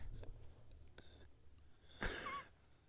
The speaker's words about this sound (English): My boy yawning. Dude, I know.